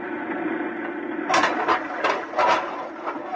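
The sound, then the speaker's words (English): A heavy airlock outer door opens as the lock is filled, with a steady mechanical drone, then a series of loud, bright clanks and hissing bursts spaced roughly every half second. No voices. “I'm going to fill the lock. Here goes the outer door.”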